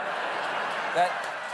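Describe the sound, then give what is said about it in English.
A steady wash of audience applause for Representative Santos after he claims to be Speaker of the House, a dense crackling patter holding at an even level for the whole moment, with a brief swell partway through. “No, don't applaud him.”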